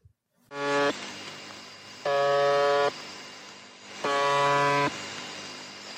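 Three harsh, low buzzing tones, each lasting under a second, sound at steady intervals over a constant bed of static hiss: The Buzzer, a Russian number station that broadcasts all the time.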